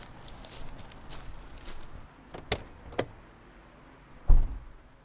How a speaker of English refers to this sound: I'll get the door for you.